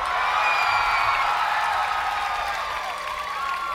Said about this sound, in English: And that special effect is the sound of a multitude of people, or at least as many people can fit here at Fort Adams. The sound of those people screaming like they're being swallowed by a whale.